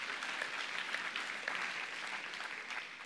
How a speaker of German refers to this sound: Genial. Einen Applaus für das super Bild.